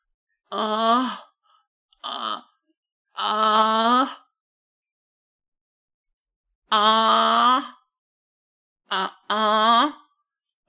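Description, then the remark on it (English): A person vocally imitates a female squirrel's mating chirps: about six short, wavering, nasal voiced bursts in irregular clusters, separated by silent gaps, with no ordinary speech. “I will mimic the chirping noises.”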